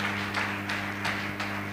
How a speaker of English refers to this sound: Clap your 2 hands for Jesus.